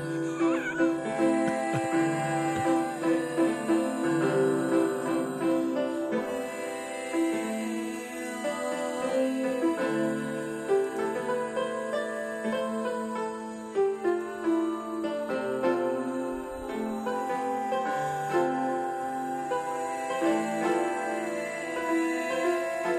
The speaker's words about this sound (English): Here we go. This is definitely a Casio tone.